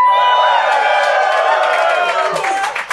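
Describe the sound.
A live audience cheers and whoops loudly, a dense wash of many voices with high shouts and scattered claps, holding steady for a few seconds before starting to fade.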